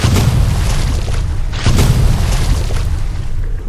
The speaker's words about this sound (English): Oh, that seems to be the fireworks for the Sea Jubilee. Unfortunately, it has caused a low-key tsunami and knocked over some of the sandcastles made by children on the beach.